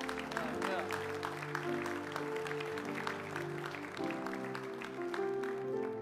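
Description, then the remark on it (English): A room full of people claps steadily for several seconds, a dense patter of hands layered over a low sustained hum and murmuring voices in the background. “Give them a hand clap.”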